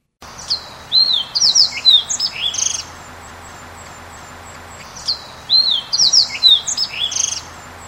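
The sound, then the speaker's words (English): A fox sparrow sings two clear, rich phrases of sliding whistles and buzzy notes, each lasting about two seconds, separated by a short pause, loud over faint background hiss. “So you can kind of hear those whistling, sliding whistles that the fox sparrow does.”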